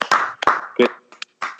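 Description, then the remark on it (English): A brief burst of hand clapping from a few people, a round of applause for Cody Parkey, with sharp irregular claps and some overlapping, quickly tapering off. “Round of applause for Cody Parkey.”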